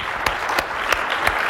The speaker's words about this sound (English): Awesome. Thank you. Round of applause for Dan.